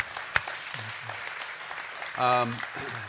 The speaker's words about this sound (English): Can you give them a round of applause, please?